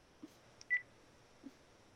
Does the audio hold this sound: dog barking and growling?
no